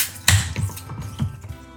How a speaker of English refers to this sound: Ah, sorry, with these Guinness widget cans, when you open them, they fizz up all over the place, so you have to kind of be, you have to have your wits about you when you open the can so that it won't fizz up all over the place.